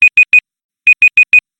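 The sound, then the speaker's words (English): A debate timer alarm beeps sharply in two quick bursts, three high electronic beeps, a short pause, then four more, loud with no talking. “I'll turn the timer.”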